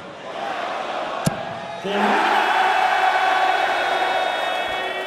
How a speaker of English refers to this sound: But they're also cheering the maximums. That's three in this match already.